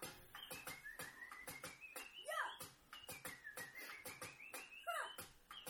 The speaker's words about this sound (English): This is how you whistle when you paint walls. I think they sound like it. With your little flat cap on.